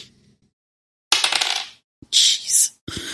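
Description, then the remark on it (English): A ten-sided die (d10) clatters and tumbles across a hard tabletop in three quick rattling bursts, crisp, then settles. There's no talking, just the sharp clicking of the roll. “And then just roll a second d10 and add that.”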